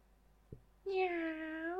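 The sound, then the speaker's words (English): A person imitates a contented cat's meow, one drawn-out, smooth and fairly loud vocal meow with a gentle falling tone, preceded by a brief soft click. “Then the happy or content meow.”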